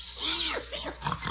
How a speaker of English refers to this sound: Oh, sure, it's a pig. It's the pig you sold me that baby food for. You ought to remember him.